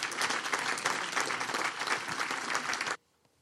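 A church audience at a Sunday service claps in a dense, steady burst of applause for about three seconds, then it cuts off abruptly into near silence.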